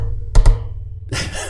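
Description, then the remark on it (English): Creaking springs: two quick, heavy low thumps followed by a sustained, harsh rasping creak that runs to the end, with no voices. “I got to figure out what's creaking on the... Yeah, I got to... I think it has to do with the springs.”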